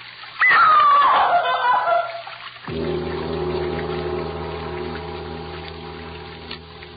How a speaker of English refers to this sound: Sound of water so loud.